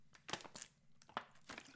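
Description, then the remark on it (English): Someone takes a swig from a plastic water bottle: a handful of quiet, irregular crinkling crackles as the bottle flexes, with no talking. “Which, by the way, let me take a swig of my water first.”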